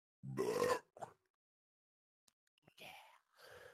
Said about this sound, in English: My mom always calls it demonic when I fucking burp like that. She's always like, why the fuck does it sound like there's a demon coming out of your ass?